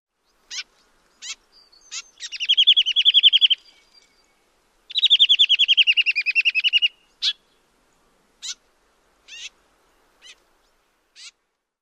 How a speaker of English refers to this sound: And here is the gray vireo call.